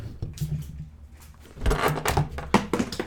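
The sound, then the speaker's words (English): A female cat jumps at a person and knocks over a microphone: a burst of loud thuds, scrapes and clattering knocks follows a quieter stretch of soft shuffling, ending in a few sharp bumps. “Yeah, the cat literally just jumped at me and knocked over our mic.”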